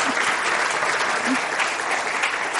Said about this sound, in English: So everybody, please give another round of applause. Thank you.